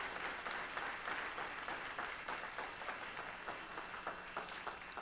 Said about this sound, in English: So if you would turn around and face the congregation, let's give them a warm round of applause and welcome.